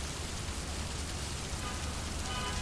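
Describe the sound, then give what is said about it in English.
Steady rain drums on a shop awning, a dense, even patter of drops with a low rumbling undertone. It holds constant throughout, with no voices. “Oh, someone else has just made a dash for it and is now under the shop awning with me.”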